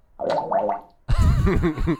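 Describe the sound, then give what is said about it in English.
Two bubbly, gurgling fart noises in quick succession, the first thinner and higher, the second louder, lower and wobbling in pitch, both clear with no talking. “Well, fart gives all those noises. Bubble farts. This is a sound.”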